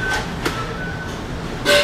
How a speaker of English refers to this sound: Got it. That's the wind.